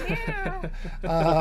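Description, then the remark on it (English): A drawn-out, wavering cat meow with strained harmonic yowls, sounding like a theatrical sound effect or voice imitation rather than a real cat, moderately loud. It is the sound effect for the cat Satan in the 1931 radio show A Witch's Tale, in its 30-minute telling of Frankenstein. “really bad sound effect for the cat.”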